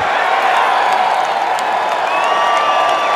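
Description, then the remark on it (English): A large stadium crowd inside BC Place roars and cheers continuously, a dense, steady wall of voices and whoops that stays loud and even throughout, with no single voice standing out. “It might be a small roar to start, but the plan is to turn the volume up on that crowd noise inside BC Place come September.”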